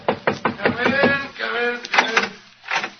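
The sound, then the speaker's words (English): A few sharp knocks on a door at the start, then a door swinging open while voices talk, the speech continuing over the sound. “Shut the door, my boy, and come in and join us.”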